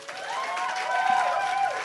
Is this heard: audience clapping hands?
yes